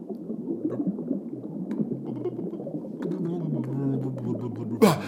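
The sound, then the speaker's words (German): A muffled underwater transition effect: low, bubbling gurgles and a slowly sliding drone fill the space, then a sudden bright splash-like burst bursts through right at the end. “Wir waren gerade unter Wasser.”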